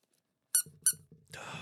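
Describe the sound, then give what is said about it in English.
A rubber duck toy squeaks twice in quick succession, bright, followed by a longer, raspier squeeze as air hisses out, with a faint low murmur of talk underneath. “Can we get a squeak check? Squeak check 1-2?”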